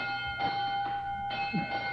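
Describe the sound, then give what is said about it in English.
An electric school bell rings continuously for a couple of seconds to mark the end of the school day, a steady, bright metallic clang with a buzzing, rattling pulse, fairly loud and alone with no one talking. “That's the bell, and that means that our school is over for today.”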